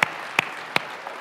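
Applause comes through as three sharp, separate hand claps spaced roughly evenly about a third of a second apart, then a faint soft tap. No one speaks.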